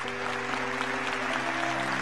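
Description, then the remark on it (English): A large group claps steadily for God after a prayer, a dense wash of overlapping handclaps with no individual rhythm, sustained at an even level throughout, with a low steady hum underneath. “Come on, give God a big old hand clap.”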